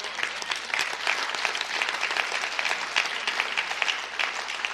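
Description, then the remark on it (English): A crowd of people applauding steadily, a dense patter of many hands clapping at a fairly even loudness throughout, with no one speaking. “Clap good if you're going to clap.”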